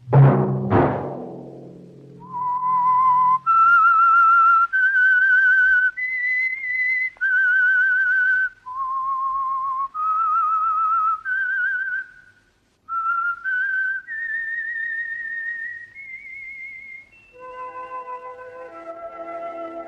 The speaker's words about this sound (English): Let that whistle be your signal for the Signal Oil program, The Whistler.